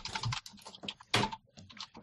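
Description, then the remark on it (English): Rapid typing on a computer keyboard: a dense, irregular stream of sharp key clicks with brief pauses and one louder keystroke burst midway, with no voices. “Where are you typing?”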